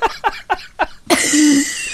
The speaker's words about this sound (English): I don't have COVID-19, but I do keep coughing. I've got a tickle in my throat.